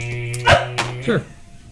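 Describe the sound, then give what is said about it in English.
A voice imitates a dog barking: three short yaps in quick succession, the first loudest, over a steady low electrical hum. “Bark.”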